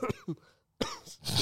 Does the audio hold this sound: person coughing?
yes